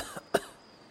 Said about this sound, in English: turned onto my side and coughed up more water.